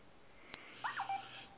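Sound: phone beeping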